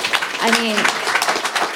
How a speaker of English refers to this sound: I mean, the applause here indicates this is, I mean, that's quite a victory.